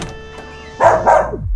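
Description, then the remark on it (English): A dog named Bones barks twice in quick succession, loud, after a moment of quiet with a faint steady hum in the background; no one speaks. “Yeah, this is my dog, Bones.”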